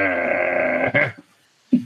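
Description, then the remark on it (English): A person imitates a dog's growl with one sustained, throaty, buzzing tone lasting about a second, fairly loud, followed after a brief pause by a short grunt. “I'm not a very good growler.”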